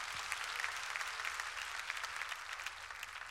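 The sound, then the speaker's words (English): An audience claps steadily for a word from the Lord, a dense wash of many hands applauding together at an even level throughout, with no voices standing out. “Clap your hands for that rich word from the Lord.”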